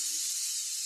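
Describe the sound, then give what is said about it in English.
A steady, sharp hiss like a snake's, bright and airy, held unbroken for just under a second with no voices around it. “Earlier, I heard the train and the snakes. The radio it's the snakes.”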